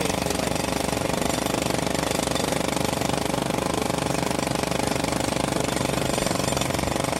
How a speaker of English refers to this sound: There was a jackhammer going on. I couldn't hear you.